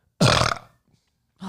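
burp

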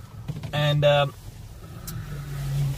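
car driving on road

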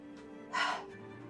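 dogs panting

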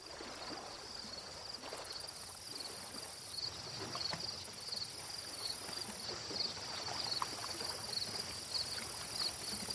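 crickets chirping

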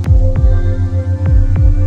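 heartbeat

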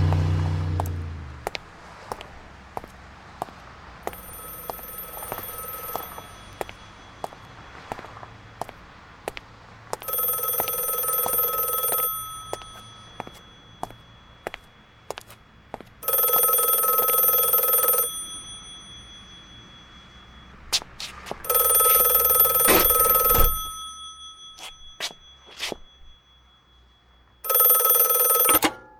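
telephone bell ringing

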